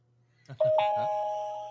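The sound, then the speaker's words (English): A Twitter notification alert on a phone: a bright electronic chime of two quick rising tones that rings on and fades slowly, over a faint low hum with a little clatter at the start. “I don't know why I turned notifications back on for Twitter.”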